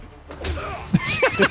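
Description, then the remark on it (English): A few sharp, dull thigh slaps ring out, the clearest one landing near the middle, mixed in with excited voices and short vocal sounds. “Thigh slap and all.”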